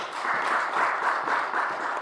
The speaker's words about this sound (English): Can we please give them a nice round of applause?